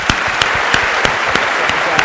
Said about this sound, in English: just one more round of applause for an awesome talk.